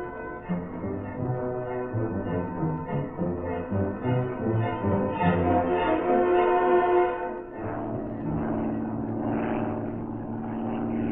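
vehicle, propeller airplane flying overhead

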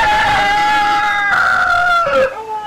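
animal, rooster crowing

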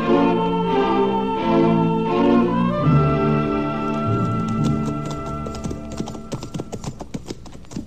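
animal, horses' hooves clip-clopping

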